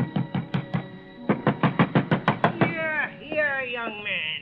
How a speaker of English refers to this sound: But ringing his bell and pounding on his door got me nothing.